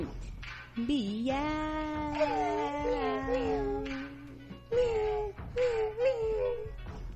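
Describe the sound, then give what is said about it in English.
Human voices mimic cat meows in a drawn-out, wavering sing-song, recorded in a studio, one long sliding meow followed by several shorter ones, fairly loud with a faint low hum beneath. “Meow. Meow, meow, meow.”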